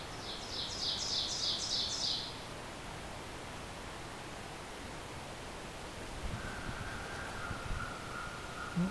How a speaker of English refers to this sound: I can see some small birds up in the tops of the red pine here. Might be pine warbler.